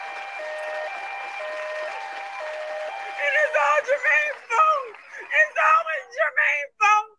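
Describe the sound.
An audience applauds with a steady, dense clatter of clapping, then excited voices and whoops rise over it in the second half, loud and close.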